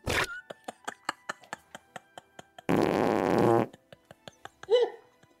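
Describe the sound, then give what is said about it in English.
A loud fart sound effect for a person letting out a massive fart as they stand upright in a room full of people: a quick string of rhythmic sputtering pops, then a long, rough, blaring blast, more popping, and a short squeaky finish, with no one talking. “However, after unbending and standing upright, I let out another massive elephant fart filled with embarrassment and shame.”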